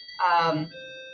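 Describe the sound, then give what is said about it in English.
A doorbell rings with steady, sustained electronic tones that hold through the whole moment, while a voice briefly cuts in over it. “It's always right now when I get the doorbell ringing.”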